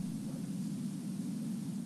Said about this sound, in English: a whole lot of static